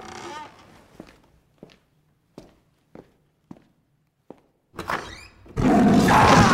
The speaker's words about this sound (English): Do you want to stay there and just keep listening to the episode? Or do you want to answer that door? You choose to answer the door.